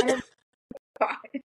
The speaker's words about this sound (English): Now you coughing. I know, yo. These allergies are kicking my ass.